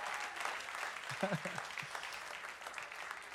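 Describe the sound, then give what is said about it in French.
An audience applauds steadily in thanks to the Lord Jesus, a dense wash of clapping throughout, with a brief murmur of voices partway through. “Est-ce qu'on peut donner une bonne main d'applaudissement pour le...”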